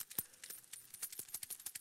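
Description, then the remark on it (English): Many coins rattling and jingling together in a continuous, busy clatter as an audience shakes coins held up in their hands, with bright metallic clinks scattered throughout and no voices. “So get your coins.”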